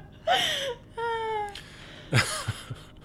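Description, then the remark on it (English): The screech of the newborn alien chestburster in several bursts: a shrill, warbling, wavering cry, then a sustained harmonic squeal, then a sharp rising shriek with short clicking grunts. Voiced by animal impersonator Percy Edwards imitating the creature. “The screech of the newborn alien, the chestburster, was voiced by animal impersonator.”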